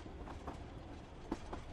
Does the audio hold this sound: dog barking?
no